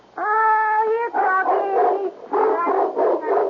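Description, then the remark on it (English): A Doberman Pinscher dog, a present from the National Kennel Club, gives a loud, drawn-out whining bark followed by several shorter, tonal yelping barks in quick succession, with no one talking. “Yes, a Doberman Pinscher.”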